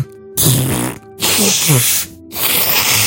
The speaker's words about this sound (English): Oh my God, I need to blow my nose.